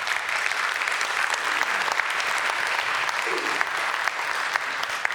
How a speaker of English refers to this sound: Awesome. Give that person a clap.